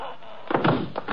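A heavy, dull thump of someone being struck over the head with a gun, followed by a couple of softer knocks and shuffling.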